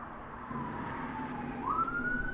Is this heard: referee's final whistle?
no